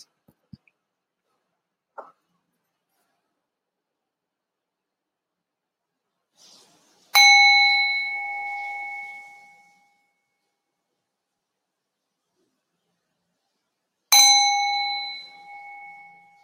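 meditation bell rung twice

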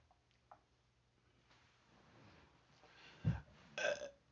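weak burp

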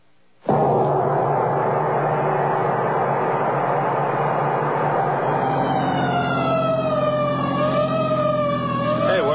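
fire engine siren wailing

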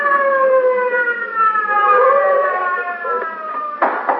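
police car siren wailing

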